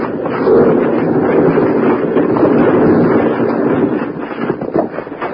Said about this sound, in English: While Bill, Jingles, and Grandpa Granger, deep in the bottom of Boulder Canyon, suddenly look up to see a landslide crashing down on them. As they start to run, huge rocks smash all around them.